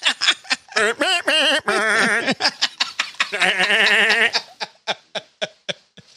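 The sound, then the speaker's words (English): A voice imitates a bleating goat while saying "P.O.P. holding it down", with shaky, wavering syllables, loud, then trails off into a run of short, breathy, evenly spaced bursts. “But the actual interview is funny because she sounds like a goat when she says P.O.P. holding it down.”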